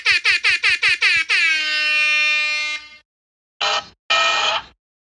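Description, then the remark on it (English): A whoopee cushion air horn sound effect toots six quick blasts, then holds a long loud harmonic blare, followed after a pause by two shorter buzzy honks, with no talking. “That was the whoopee cushion air horn.”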